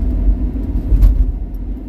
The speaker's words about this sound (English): Traffic's picking up.